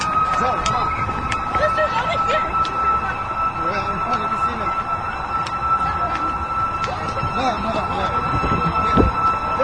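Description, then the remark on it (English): An ambulance siren holds a steady, piercing tone as the ambulance comes in, above a noisy crowd, with people talking and moving around throughout. “There's one ambulance there coming in.”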